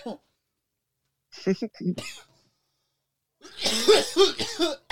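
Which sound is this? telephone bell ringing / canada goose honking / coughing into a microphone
coughing into a microphone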